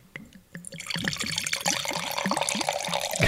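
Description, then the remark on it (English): Wine glugs steadily into a glass, a bubbling pour with rhythmic gurgles that grow fuller and brighter as the glass fills, with no voices over it. “Now that's a nice pour.”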